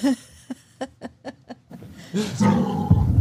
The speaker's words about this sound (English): You hear that dog? That dog's fired up over something.